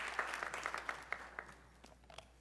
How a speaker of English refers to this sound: Another hand clap.